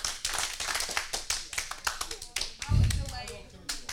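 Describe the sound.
An audience trying to do three claps together claps in a loose, uneven scatter of sharp hand claps rather than a few crisp unison beats, with a brief murmur of voices partway through.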